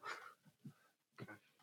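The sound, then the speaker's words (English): A dog gives a handful of short, soft yips and whimpery barks in quick bursts, with a brief pause in the middle, fairly quiet and without anyone talking. “Or are you talking to the dog? He came down for a moment.”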